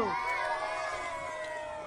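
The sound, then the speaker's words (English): A dense crowd cheers and shouts in a sustained, excited roar, many voices overlapping at a steady high level for the full two seconds with no pauses. “The crowd is in a frenzy as they Woo! Watch this whole process.”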